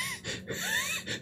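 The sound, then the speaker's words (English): A voice mimics extremely heavy breathing, a run of loud, raspy gasping breaths with snorting, wheezy edges, repeating in quick uneven pulses. “Breathing like extremely heavily.”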